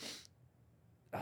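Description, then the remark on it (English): A sharp, hissy sneeze bursts out at the start, followed by about a second of near silence, then another loud, breathy burst at the end. “I'm going to sneeze, man, and it is killing me.”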